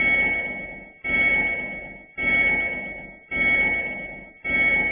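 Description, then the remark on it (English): A Nissan electric car's reversing warning sound: a synthetic electronic tone pulsing five times in a steady rhythm, each pulse starting strong and fading before the next, with a bright ringing upper layer. “And this sound was chosen when moving in reverse.”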